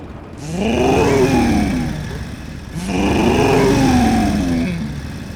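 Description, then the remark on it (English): A motorcycle exhaust revs twice in succession, first a standard motorcycle exhaust, then a Thunder Pipes aftermarket exhaust system, each rev climbing to a loud, throaty peak and then dropping back, with a brief pause between the two bursts and no talking. “For example, this is your standard motorcycle exhaust. And this is a Thunder Pipes exhaust system.”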